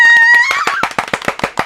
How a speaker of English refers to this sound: Is there an award? We'll clap for you.